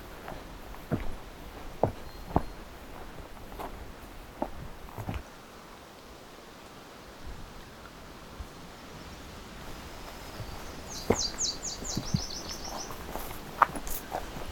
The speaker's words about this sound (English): Seems like another myrtle warbler here.